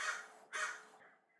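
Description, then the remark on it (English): A crow in a backyard caws twice in quick succession, harsh and raspy, with a fainter trailing call afterward. There is no speech. “I've got like this crow or something in my backyard, and he's like, rah, rah, rah.”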